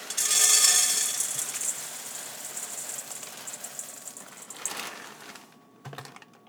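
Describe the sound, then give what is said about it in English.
About a cup of Rice Krispies cereal pours into a bowl as a steady, dense rattle of tiny crisp ticks, strongest at the start, then thinning to a few scattered taps at the end. No one speaks. “Rice Krispie treats, of which I'm going to pour out about a cup.”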